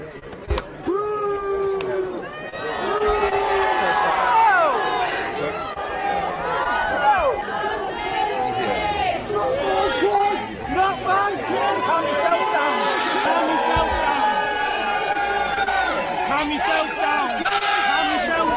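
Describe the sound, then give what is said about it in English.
A street crowd in York, England, during King Charles's visit boos loudly and continuously at a man who threw eggs, many overlapping voices rising and falling in long jeering calls for the whole stretch, with two short sharp snaps of eggs cracking right at the start. “The booing is from other people who were mad at the egg thrower.”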